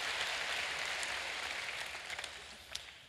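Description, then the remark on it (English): A church audience claps together during a sermon, a dense, steady wash of crackling applause with a few sharper claps standing out, tapering slightly toward the end. No one speaks. “You can clap about that if you'd like. I knew you wanted to.”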